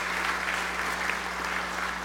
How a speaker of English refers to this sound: So welcome, and give him another round of applause for his time with us.